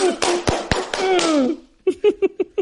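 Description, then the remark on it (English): A handful of sharp hand claps land in a slow, steady rhythm while a voice talks or laughs over them, followed by a quick run of short, punchy bursts. “Slow clap, baby. Yeah, the slow clap.”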